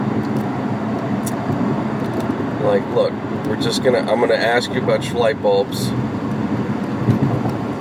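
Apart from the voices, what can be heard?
freeway traffic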